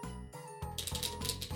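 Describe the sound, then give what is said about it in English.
Playing cards being shuffled, a quick run of crisp, rapid clicking and flicking bursts with no voices, over a low steady hum. “Here's that good shuffle.”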